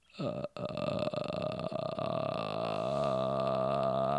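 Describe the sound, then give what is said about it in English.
A voice imitates a croaking sound: one long, rough, guttural drone held for about four seconds, loud and steady with a buzzy low tone and a brief catch near the start. “There's that, you know, the recognizable, like, croaking sound.”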